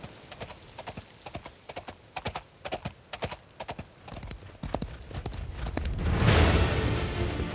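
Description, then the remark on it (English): Hooves of Black Beauty, a horse galloping swiftly along a cliffside path in a sea breeze, pound out quick, grouped beats, then a rising whoosh of wind-like noise swells in and partly washes over the hoofbeats toward the end. “Black Beauty's long mane fluttered in the sea breeze as he galloped swiftly along the cliffside path.”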